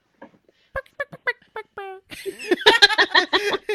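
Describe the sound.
A voice imitates a dolphin with a quick run of short, squeaky chirps and clicks, then breaks into louder laughter and overlapping voices.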